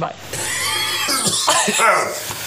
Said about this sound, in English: an old man with his hacker cough